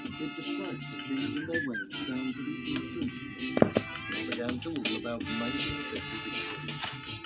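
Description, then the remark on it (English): A cat meows several times, clear, over a dense, steady background with voices faintly present. “No, Kitty, this is not a good time.”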